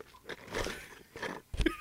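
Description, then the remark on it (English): Loud, wet slurping as a person aggressively sips Mountain Dew, several noisy gulps and sips in quick succession, ending with a sharp smacking burst. “Aggressively sips Mountain Dew.”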